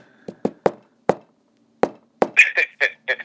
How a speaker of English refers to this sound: And you do the secret knock.